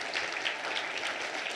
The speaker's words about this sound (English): Just the rest of us, just give them a round of applause. Just thank them.